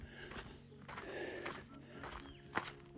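Footsteps crunch slowly over dry, gritty desert ground in a desert range, about four or five steps at an unhurried pace, with a faint outdoor hum in the background and no talking.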